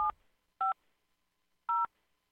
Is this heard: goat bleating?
no